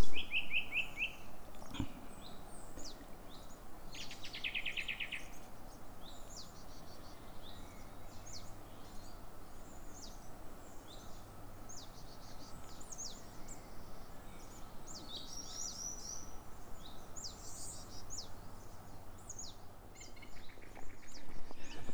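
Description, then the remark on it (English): A song thrush sings steadily through the whole stretch, bright repeated chirping phrases ringing out clearly over a soft outdoor hush, with no voices. “so peaceful. Except for that rather noisy song thrush.”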